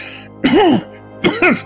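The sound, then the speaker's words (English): A person imitates two rough, throaty coughs of someone choking after inhaling something, each a short voiced burst, separated by a brief pause, with no speech around them. “Out of 5, you almost kind of choke as it you inhale this stuff and start coughing.”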